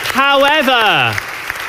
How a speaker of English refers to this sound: And Act 2 closes like that. Big round of applause.